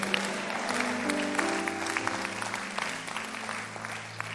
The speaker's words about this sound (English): If you agree with me, clap your hands and say amen.